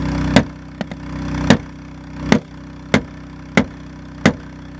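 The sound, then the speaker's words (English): At night, someone strikes a car's small window again and again to break into the car, about seven sharp, heavy blows at uneven intervals, each a loud thud, over a steady low idling hum. No one speaks. “It takes a while before the window finally breaks.”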